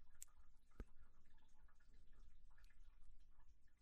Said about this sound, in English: Where's all this water coming from? I think we got a leak in here.